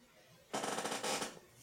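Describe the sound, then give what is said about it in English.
A chair gives one loud, grating squeak lasting about a second, made of rapid ratchety pulses with a harsh, squealing edge, then it cuts off. No one speaks. “I think that was the loudest my chair's ever squeaked. It's squealing too.”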